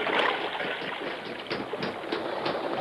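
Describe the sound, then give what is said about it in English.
A steady, dense rush of an underground river flowing through a cave, a continuous churning hiss with small splashy surges, fairly loud, and no voices. “We got him. He's in the underground river.”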